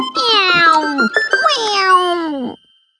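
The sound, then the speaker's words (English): Two drawn-out kitten meows in a row, each sliding downward in pitch, loud with a brief gap between them and nothing else in the background. “The three kittens grew and they learnt how to mew.”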